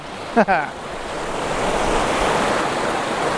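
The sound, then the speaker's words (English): Steady, loud rushing of river water around a person standing in the river in Scotland, a continuous broad hiss throughout, with a brief snippet of a voice near the start. “I'm starting off noisy because I'm stood in a river.”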